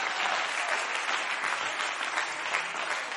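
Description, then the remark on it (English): A crowd claps their hands to the Lord during a sermon, dense overlapping handclaps at a fairly loud, even level for the whole stretch, with no voices standing out. “Come on, clap your hands to the Lord.”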